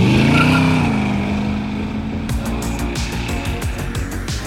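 A loud car engine hums with a rising, revving pitch, then continues under a steady series of sharp rhythmic bursts, with no voices.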